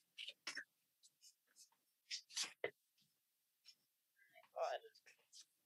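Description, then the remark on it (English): A deck of tarot cards being shuffled in short, papery bursts of riffling and sliding, with brief pauses between them, fairly quiet overall. “I hate doing it with the mic. This is why I only do it on YouTube”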